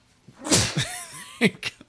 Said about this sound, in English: I'm going to sneeze.